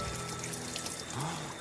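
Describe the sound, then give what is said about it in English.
River water pours and splashes out of every seam of a car in a steady, continuous gush with some trickling as people tip the car upright on the shore after hauling it from an icy river; moderately quiet, with no one speaking. “They got it to the shore, and river poured out of every seam of the car as they worked to tip it upright.”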